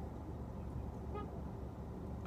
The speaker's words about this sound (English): Is she blinking her? Is she putting the horn on and she's right beside the car?